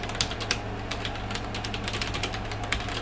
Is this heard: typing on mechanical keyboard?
yes